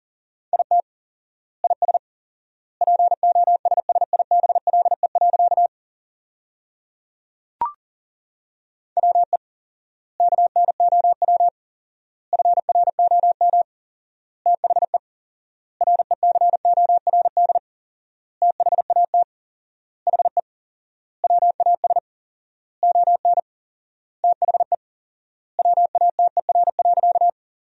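Morse code tones send a sentence built from the 500 most common words at 40 words per minute with fourfold word spacing: a single steady mid-pitched beep keyed in rapid dots and dashes, with bursts of letters separated by long silent gaps between words. No one speaks.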